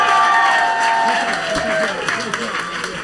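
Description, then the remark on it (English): A crowd applauds and cheers loudly, dense clapping mixed with whoops and high shouts that hold steady for a few seconds, then ease slightly. “Give them another round of applause, guys.”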